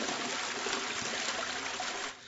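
A steady rush of running water, like a toilet flushing, pours loudly for about two seconds before abruptly tapering off. No voices are heard.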